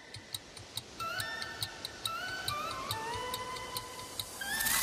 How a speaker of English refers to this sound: And pretty much it starts off with like the really dramatic, like whirring synth that you and the clock ticking